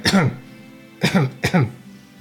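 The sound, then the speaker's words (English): Three harsh coughs: a single cough, a short pause, then two more in quick succession, loud and raspy with no talking around them. “you hear someone coughing.”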